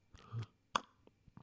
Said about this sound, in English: Hang on, let me take a sip of my tea.